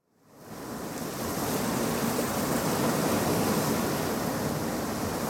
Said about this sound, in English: And you can hear the waves of the beach always sounding much more ferocious than they actually are.